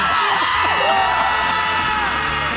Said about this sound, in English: Whole office in the studio with them. Like, we used to do that, too. You get everybody in the office. Come on, it's time for the scream. It's time to kiss the week. Goodbye.